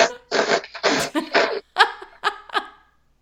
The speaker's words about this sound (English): is sobbing and blowing her nose. She's so upset.